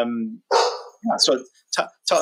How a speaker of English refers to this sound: They're a larger size, but yeah, both rescues. So they might bark occasionally.